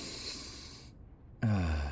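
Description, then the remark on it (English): A long nasal sniff of a cigarette just slid out of its pack, drawing in air for nearly a second, followed by a brief pause and then a short voiced breath or hum. “I slid a cigarette out of the pack and gave it a good sniff.”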